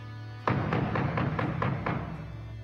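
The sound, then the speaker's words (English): Someone raps on a door with about seven firm knocks in a quick, steady rhythm, loud over a low background hum. No one speaks. “She wouldn't knock.”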